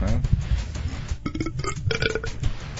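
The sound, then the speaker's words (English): A long, rumbling burp, low and gravelly, drawn out over a few seconds with a rough, croaky texture. “You're just burping.”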